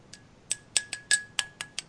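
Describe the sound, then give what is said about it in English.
Someone raps on a big coffee cup about eight times in quick, slightly uneven succession, each sharp clinking tap bright and ringing, with a faint steady tone humming underneath. No voices. “In the meantime, get my big old coffee cup over here so I get something to bang on.”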